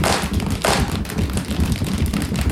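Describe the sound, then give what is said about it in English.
A group claps hands to imitate the thunder and lightning of a thunderstorm they build from sounds: two loud, sharp bursts near the start, followed by a dense, continuous patter and rumble of many hands and feet. No one speaks. “Finally, the thunder and lightning come with a clap of our hands.”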